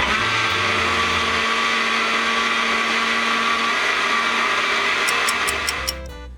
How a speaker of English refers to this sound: Now his favorite food is hot dogs, so I thought I would blend him up some using the Blendex 3000. We'll just start off with a pack of Spenmore All Sphincter Meat hot dogs. I'm just gonna push the hot dog button.